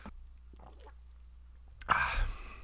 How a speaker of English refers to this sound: So let me take a breath, take a sip of coffee here. One sec.